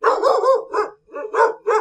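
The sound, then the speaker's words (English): A dog named Tonto barks loudly, a quick run of sharp, throaty barks followed by a brief pause and a few more, with no other voices, as the car he rides in with his head out the window turns into a street. “As they turned into the street with Tai's house, Tonto gave a loud bark.”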